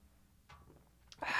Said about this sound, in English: I'm going to take a sip of my LaCroix seltzer water here because I'm a douchebag. Pause real quick.